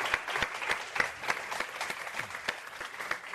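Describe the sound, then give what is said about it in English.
A crowd at a panel discussion applauds steadily, many hands clapping in a dense, continuous patter with a few sharper claps standing out, moderately loud and with no one talking over it. “And with that, if we give a round of applause.”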